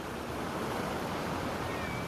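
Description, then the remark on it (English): Ocean waves wash steadily onto a sandy beach, a continuous broad hiss of surf with no distinct breaks, even in loudness. No one speaks. “And then this wave catches a part of your name and washes it away and goes back into the ocean.”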